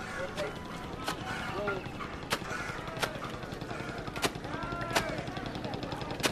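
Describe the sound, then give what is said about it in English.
Sharp, wet slaps of laundry being beaten against a rock by a man in Varanasi, India, repeating at a steady, unhurried pace every second or so, with faint voices and outdoor bustle in the background. “There's a man doing laundry on a rock.”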